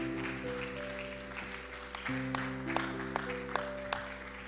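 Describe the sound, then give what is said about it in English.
An audience claps to the Lord during a church service, a dense steady patter of many hands with a few sharper claps standing out, over sustained organ or keyboard chords. “One more time, clap your hands to the Lord.”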